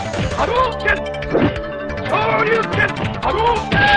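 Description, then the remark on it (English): Super Nintendo video game audio: a dense, steadily loud stretch of layered synthesized music with bright melodic lines and repeated percussive smash-like hits, with no talking over it. “Here's the Super Nintendo version.”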